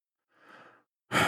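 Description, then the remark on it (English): Deep breathing: a soft, airy breath followed after a short pause by a much louder, forceful rush of air. No one speaks. “So I'm breathing.”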